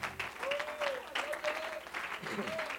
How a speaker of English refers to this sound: And why don't you one more time give the Lord a great hand clap of praise all over the house.